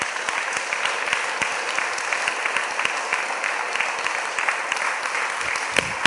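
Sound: audience clapping hands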